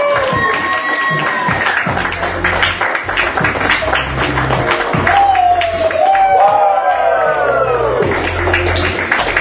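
A crowd applauds loudly and steadily, with dense clapping throughout and rising whoops, cheers and whistles cutting above it.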